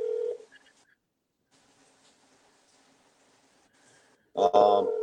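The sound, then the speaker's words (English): A phone call to a man who does not answer: brief dial tones at the start, then a long stretch of faint, quiet line noise with no answer, ending in a sudden loud burst of sound. “He's not answering his phone.”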